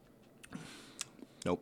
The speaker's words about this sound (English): I have another sip of my underwhelming raspberry acai beverage.